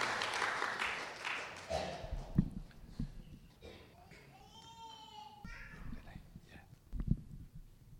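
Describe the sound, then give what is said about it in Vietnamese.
An audience claps for a pastor about to give testimony in Vietnamese, in a dense burst of applause that fades after a couple of seconds, giving way to scattered voices and murmuring. “Chúng ta cho ông một tràng pháo tay để được khích lệ trong tinh thần truyền giáo của ông.”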